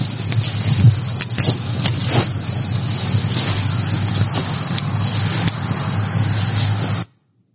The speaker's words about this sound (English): Okay, so when you hear the knock and then you hear some equipment noise, I don't know if it's the recorder being moved around or if it's a camera being moved around